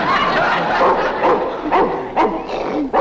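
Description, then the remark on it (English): A Russian wolfhound barks repeatedly in short, yappy bursts with a few whimpering yips mixed in, loud, continuing steadily for a few seconds. “What a vicious pooch. How do you like my new dog?”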